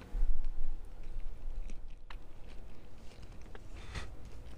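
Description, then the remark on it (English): Close, wet chewing right against the microphone, with irregular crunchy bites and mouth clicks repeating over a few seconds; no one speaks. “Ew, God, can you hear me chewing? Yeah, for sure. Chewing right into the microphone.”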